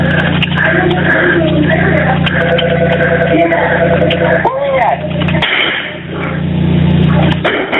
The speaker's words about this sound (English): He's still shooting. I'm hearing shots over the phone.